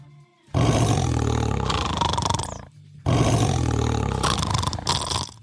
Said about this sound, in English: Here is a tiger. Ooh. That sounds like me snoring.